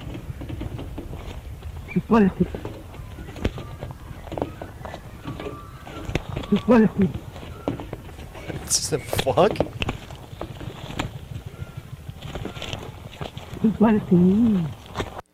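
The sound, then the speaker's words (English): A duck mimicking human speech, croaking out the short, raspy phrase "you bloody fool" several times over a steady rustling background, with a person briefly exclaiming in between. “The fact that the thing that this duck is saying is "you bloody fool" is perfect.”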